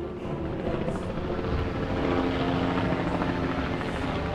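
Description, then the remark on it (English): A helicopter's steady rotor thrum and engine roar fill the air, loud and continuous as it flies overhead during an armed assault on the principality of Sealand, with no voices present. “The team used jet skis, speedboats, as well as helicopters in the assault.”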